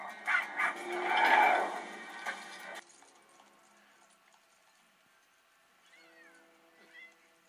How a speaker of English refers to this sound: Yeah, there's a cat there.